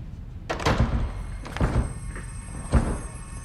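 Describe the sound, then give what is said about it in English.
A door being forced and broken open with several heavy thuds and cracking impacts, two quick blows, another pair a second later, then one final hard bang, no voices. “you broke the door.”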